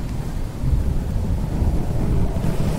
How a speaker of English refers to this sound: But September weather in Cleveland isn't as predictable as the weather at Disneyland. The night before the big release, a sudden storm blew in.